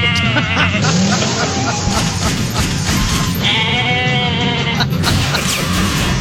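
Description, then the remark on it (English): A goat bleats loudly several times in a row, its wavering, quavering cries prominent over a constant noisy background. “Cops returned the goat to its owner and took the guy to jail.”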